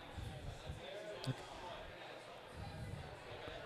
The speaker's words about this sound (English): Another table slap of recognition from the back. It seems like it.